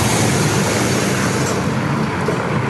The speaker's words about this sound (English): Got some cars driving through.